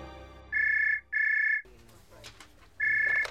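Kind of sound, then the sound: signal or alarm, telephone ringing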